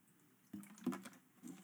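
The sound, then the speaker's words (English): Someone takes a few quiet sips of water, with soft wet slurps and a swallow, in a brief, hushed moment without talking. “Sorry, just let me take a drink.”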